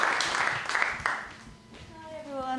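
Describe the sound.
A crowd claps steadily for under two seconds, a dense patter of hand claps that thins out as a single voice begins speaking over the last of it.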